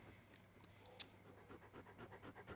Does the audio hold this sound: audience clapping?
no